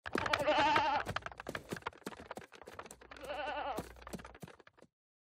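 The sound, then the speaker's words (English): Goats bleat twice, long wavering cries a couple of seconds apart, with scattered clattering and knocking sounds throughout and no one speaking. “What the hell did the goats do in here?”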